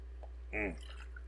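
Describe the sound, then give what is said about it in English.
Someone takes a quick drink of water: one short, wet gulp with a slight voiced edge, surrounded by near silence and a steady low hum. “I could have been drinking water during the introduction.”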